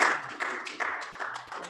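An audience claps steadily, a dense crackle of many hands with loudness swelling in regular pulses about every half second. No one speaks over it.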